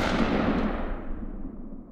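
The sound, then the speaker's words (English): Loud Luger pistol gunfire inside a house, a sharp blast that rolls into a long, fading echo lasting a couple of seconds, with no voices. “His eyes have gone black, and it's as if he's being remotely controlled by some dark entity, when he interrupts the relaxing scene in the bathroom and begins firing on his parents.”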